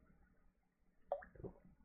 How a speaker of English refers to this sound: Excuse me. Take a drink of water real quick.